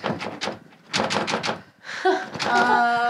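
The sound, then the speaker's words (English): Two quick bursts of loud, rapid banging and clattering as a door slams shut and things slam, followed by more clatter mixed with voices and a sustained tonal sound. “Well, because there's things slamming.”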